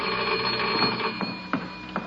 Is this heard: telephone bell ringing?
yes